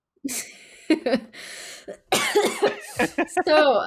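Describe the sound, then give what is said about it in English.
A few harsh coughs break out in quick succession, loud and raspy, before voices take over with animated talking. “So my cough is... I have a radioactive cough.”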